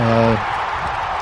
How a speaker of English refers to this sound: We'll do a crowd cheer for some headlines, and I'll find Matt Moore's article on that.